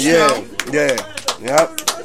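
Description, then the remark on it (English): A handful of sharp, irregular claps ring out alongside loud, sweeping vocal sounds, with the claps scattered rather than building into steady applause. “Yo, clap it up.”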